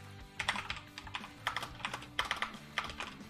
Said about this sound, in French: Allez, tu sais plus taper au clavier ou quoi,